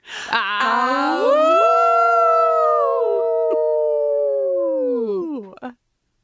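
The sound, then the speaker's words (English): Voices imitate a wolf howl in one long, loud, sustained cry, pitch rising then holding steady for several seconds before trailing off, with layered harmonics suggesting more than one person howling together. “I hardly feel qualified to howl along with you, but you will be adding an incredible amount of howl cred to us.”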